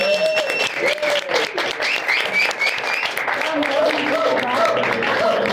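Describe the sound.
Sustained audience applause, a dense, steady wash of clapping that stays loud throughout, with faint voices and cheers rising over it.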